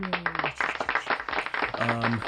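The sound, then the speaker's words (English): A short burst of applause, dense rapid clapping filling about two seconds, with a voice or held tone sounding briefly at the start and end. “Round of applause.”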